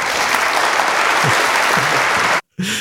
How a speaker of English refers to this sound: More applause. Applause all around.